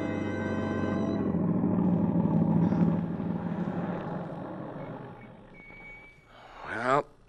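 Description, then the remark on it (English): A car engine rumbles steadily, then winds down and fades as the car with Tom Stevens and Helen Benson drives up to the boarding house in the early evening and stops. A voice begins briefly right at the end. “Tom Stevens and Helen Benson drive up to the boarding house after their picnic, quite unaware of the dark squad car parked at the curb a few feet ahead.”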